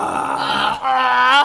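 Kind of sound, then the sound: human body sound, burp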